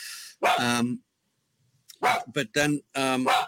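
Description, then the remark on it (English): Dogs barking loudly, a single sharp bark followed by a pause, then a quick run of three more barks in an uneven rhythm. “Freaking dogs distracted me now.”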